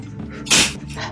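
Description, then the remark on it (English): A person imitates the heavy breathing of their dog Apollo pacing around them: a loud, hissing breathy huff, then a softer second exhale. The rasping air has a low rumble beneath it, and no words are spoken. “and don't get me wrong, I love my dogs, but the way that Apollo, after doing a day of lounging and sleeping, will just, like, the moment I'm in the middle of doing something important, will pace around me, just breathing like this.”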